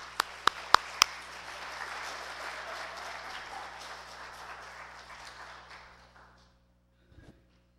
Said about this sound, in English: Let's give Howard a round of applause.